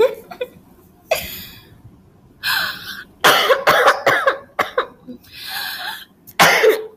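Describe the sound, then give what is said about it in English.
A person coughs hard over and over, with harsh bursts coming in uneven clusters, some quick and choppy and others drawn out and raspy, loud with brief pauses between. “Do you know whenever you cough and then you're coughing so hard that you start laughing, but then the laugh makes the cough come back and it's just uncomfortable for everyone?”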